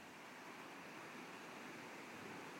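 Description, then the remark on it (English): A soft, continuous wash of ocean surf, steady and even throughout with no distinct crashes standing out, heard alone without any voices. “Feel the power and energy of the ocean filling you. The power of the waves.”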